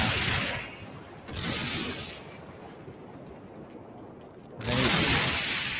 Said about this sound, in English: I still don't think they're at a safe distance. No. How big that explosion is.